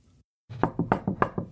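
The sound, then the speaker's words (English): About six sharp knocks rap on a wooden cupboard door in a quick, steady rhythm, fairly loud, after a brief silence, with no voices, as a man knocks again on the cupboard door. “He knocked again on the door of her cupboard.”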